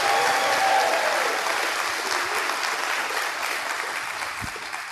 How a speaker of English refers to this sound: Thank God that we have youth who serve. Let's give our youth a big hand clap of praise. Come on, let's give it to them. Come on, let's give it to them.